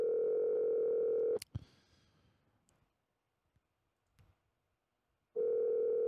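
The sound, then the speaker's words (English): An outgoing phone call's ringback tone purrs steadily, stops for about four seconds of near-silence broken by faint clicks and rustles, then starts ringing again, loud. “So I apologize for the ringing.”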